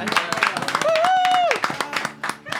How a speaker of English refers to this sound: Round of applause